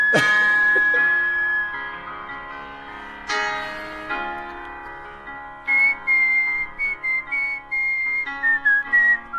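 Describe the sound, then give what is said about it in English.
Someone whistles a clear, high melody as a whistling competition entry over a ringing, bell-like accompaniment, the whistled notes sustained and sliding, fairly loud with no talking. “Okay, so that's you with a whistling competition entry”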